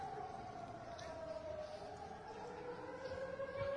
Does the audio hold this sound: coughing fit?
no